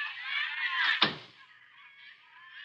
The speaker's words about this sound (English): Just hang on the phone a minute while I close the door here so as I can...